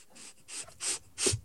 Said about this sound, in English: I start to sniff a little. Okay. Sniffing.